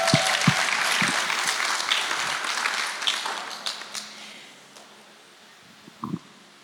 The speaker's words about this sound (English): That is a hand clap for you,